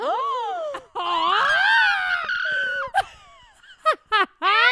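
A woman lets out loud, high-pitched screams, first a long wavering shriek, then several short sharp yelps in quick succession, with no talking.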